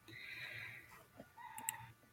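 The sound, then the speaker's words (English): A rooster crows once, a drawn-out call that rises and then drops into a lower, fading tail, heard alone and fairly quiet. “Oh, I hear a crow.”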